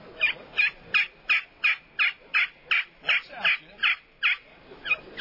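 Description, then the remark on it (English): A hand-worked wooden friction call imitates a turkey with a steady run of about a dozen sharp, raspy yelps, evenly spaced, with no talking over them. “And, you know, we got these little friction calls here, this wood calls that's pretty simple.”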